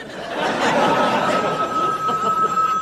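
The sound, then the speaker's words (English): A telephone bell rings steadily, its bright tone held over a wash of audience laughter and chatter that fills the background throughout. “Aren't you going to answer it?”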